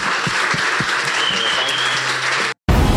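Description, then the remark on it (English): An audience at Redemption Church breaks into loud, sustained applause, dense clapping filling the air steadily for a few seconds before a brief cut, then the clapping resumes. “Hey, let's give everybody a big round of applause one more time.”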